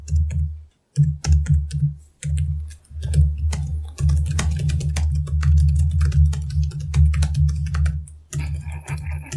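Rapid typing on a computer keyboard, a dense stream of sharp clicks and clacks with brief pauses between bursts, running steadily over a low constant hum with no voices.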